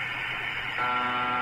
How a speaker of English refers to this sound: But often, the only thing you'll hear on this band is a Russian station known as UVB-76. It's been broadcasting around the clock since 1973, and about all anyone has ever heard from this station is this buzzing sound.